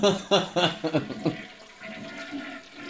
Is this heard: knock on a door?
no